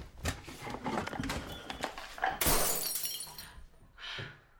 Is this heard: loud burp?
no